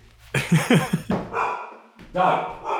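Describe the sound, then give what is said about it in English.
The speaker's dog barks in a quick burst of three or four sharp barks, going nuts, followed by a stretch of muffled voice or vocal noise in the background. “My dog's going nuts.”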